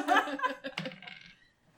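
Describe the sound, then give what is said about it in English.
Someone else's dice are rolled across a hard tabletop in a quick rattle of sharp clicks that settles within a couple of seconds, with faint laughter mixed in. “I am now rolling someone else's dice.”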